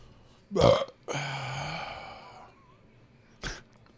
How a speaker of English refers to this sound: Like, if anyone comes back to, let's see what they talked about this week, and they hit play, and it's nothing but just burping and shit.